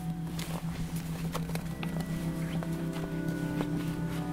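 Donkey hooves clip-clop in an uneven walking rhythm, a series of sharp knocks over a steady low hum, with no one talking.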